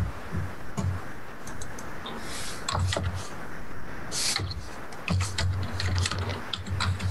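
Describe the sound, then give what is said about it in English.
Irregular clicks and taps of typing on a keyboard, coming in quick bursts with short pauses, over a steady low rumble in the background. “Y'all hear that? The typing noises?”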